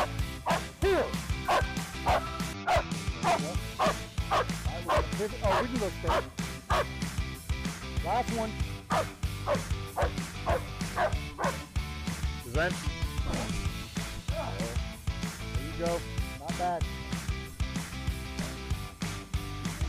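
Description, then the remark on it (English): A dog barks loudly and repeatedly, mixing sharp yips with whining whimpers in a steady, agitated stream, while a person's voice talks underneath. “I don't want to hurt the dog.”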